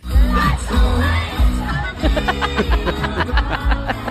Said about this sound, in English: Did you hear all those young screams in the crowd?